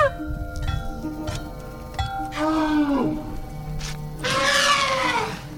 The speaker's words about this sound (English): This clanging and thumping and trumpeting is performed by …. The pachyderms have been trained to create their own music using tools confiscated from illegal loggers.